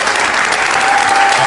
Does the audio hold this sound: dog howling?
no